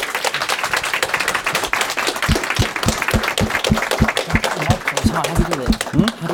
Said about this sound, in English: So yeah, I think this guy deserves a round of applause too.